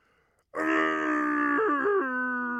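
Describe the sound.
A voice imitates a Wookiee yell, without the proper warble, live on a radio show: a loud, sustained, throaty roar that bursts in suddenly, wavers with a couple of dips in pitch, then holds a lower growling tone to the end.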